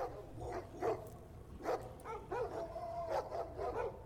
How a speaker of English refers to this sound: The dogs are going to join the pile and hop around, like, barking and just enjoying your presence, covering your face with slobbery cold kisses.